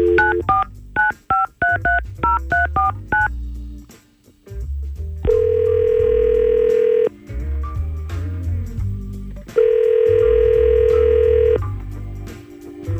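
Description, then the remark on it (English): A quick run of about ten touch-tone dialing beeps as a phone call is placed, then a pause and two long ringback tones a few seconds apart, clear over a low, steady background hum. “let's see if we can call Dee Dee right now”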